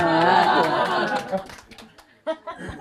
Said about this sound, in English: You didn't clap like that when I told a joke.